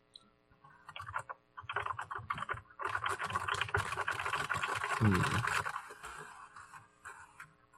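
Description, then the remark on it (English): Rapid gibberish typing on a computer keyboard in the Atom code editor, a dense flurry of clicks and clacks that builds in the middle and then trails off into a few scattered taps. “Now I'm just typing gibberish.”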